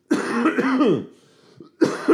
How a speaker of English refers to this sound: Sorry, I'm going to cough because I have had a cold for 3 weeks.